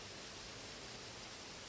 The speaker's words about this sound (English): I'm just kicking it beside the waterfall.